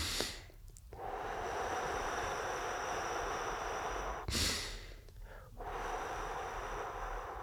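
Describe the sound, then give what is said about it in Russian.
A sharp breath in followed by a long, steady seven-second breath out that hisses on, then another quick inhale and more slow exhaling, with no talking, as part of a calming breathing exercise. “И медленный-медленный выдох. 7 секунд выдох.”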